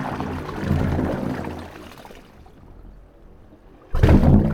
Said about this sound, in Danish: For nu næsten præcis 2 år siden, der besøgte jeg et såkaldt bølgeorgel, der ligger cirka midt imellem Golden Gate Bridge og Oakland Bay Bridge i San Francisco.